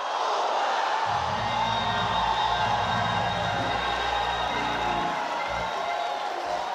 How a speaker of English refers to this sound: This is the time in the service that everybody's shouting over something different, because everybody's threat is something different.